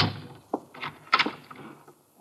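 A door being pulled and rattled as someone tries to get out through it, with a sharp thump at the start and a few clattering knocks over a couple of seconds, then a faint final knock.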